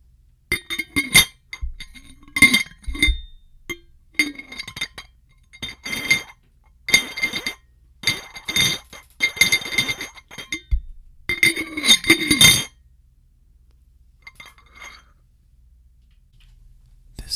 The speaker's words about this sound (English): and I will be opening and closing a glass jar.